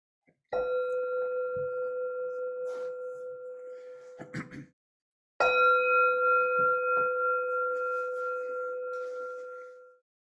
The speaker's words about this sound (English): Now ring a bell, and I'll ring a bell at the end.